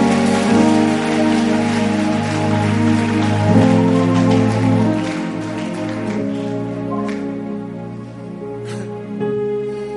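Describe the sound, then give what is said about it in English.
An audience claps steadily in praise of God in a dense, continuous patter, layered over sustained keyboard or organ chords that hold throughout; no one speaks. “Praise! Praise! Oh, increase that clap of faith if I know that you are here.”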